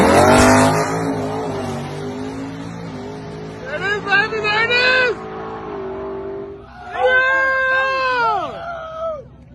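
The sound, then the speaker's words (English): A stock 2019 Mustang GT with a 10-speed automatic, unopened engine and stock rear end accelerates hard down a drag strip on a quarter-mile run, its loud roaring pitch climbing and dropping with each rapid gear shift, dominant throughout. “This is a 2019 GT 10-speed auto.”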